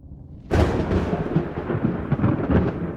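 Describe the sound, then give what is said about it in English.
After a moment of faint low rumbling, a sudden loud crack of thunder from a sudden storm sweeping over Mingus Mountain bursts in and keeps rolling and crackling heavily for a few seconds, with no voices. “A sudden storm swept over Mingus Mountain, delaying the lawman's trip back to the Davidovich place.”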